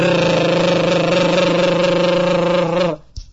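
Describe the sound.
A voice imitates a pneumatic drill with a loud, steady, buzzing rattle held for about three seconds, then cuts off abruptly into a brief breathy trail.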